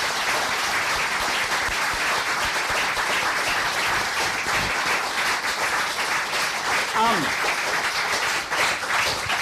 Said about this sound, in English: So can we have a big round of applause for our three readers there? Fantastic. That's great.